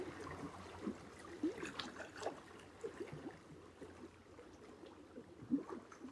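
Soft, steady whooshing of water, a continuous muffled rush with small trickling ripples and occasional gentle swells, heard alone without any voices.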